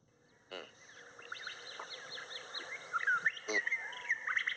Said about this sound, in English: The birds chirping and shit.